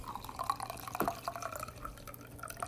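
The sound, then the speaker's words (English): A cocktail pours from a chilled shaker in a steady trickle over a large ice rock, with small clinks and drips scattered through it, fairly quiet, with no one speaking. “Once that shaker's real nice and chilled, you can then pour it over a large rock, put in your lemon peel, and enjoy.”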